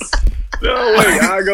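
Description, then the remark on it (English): A few quick catching breaths lead into a loud, drawn-out voiced sneeze, its strained wailing tone ending in a broad, hissy burst. “Oh my God, God bless you.”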